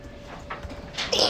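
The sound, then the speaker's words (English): A single quick sneeze bursts out near the end, sharp and breathy, after a moment of quiet. “Bless you.”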